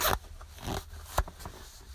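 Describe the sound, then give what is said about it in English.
A clothing zipper is pulled up with the microphone held by it, inside a car, starting with a sharp rasp, then softer ratcheting scrapes and a second quick zip partway through, with no talking. “I was like, put the microphone by my zipper.”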